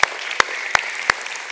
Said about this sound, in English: So we do want to take a moment as we begin to simply celebrate dads. So if we can give a big round of applause to all the fathers who are here.